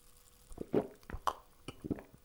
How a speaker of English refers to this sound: Hold on, let me just take a sip of this cool, refreshing Pepsi.